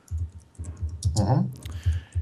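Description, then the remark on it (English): Rapid, uneven keystrokes clatter on a computer keyboard, with a brief voice-like murmur and a soft rustle partway through. “You're typing.”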